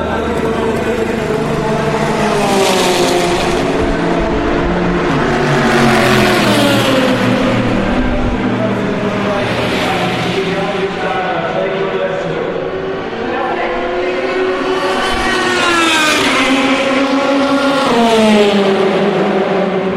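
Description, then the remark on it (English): Race cars pass one after another down pit lane, approaching and departing to the right, engines droning loudly with pitch sweeping up and falling away as each car goes by, several passes in steady succession. “you should hear the cars with a much clearer, broader stereo image as they approach down the pit lane and depart to our right.”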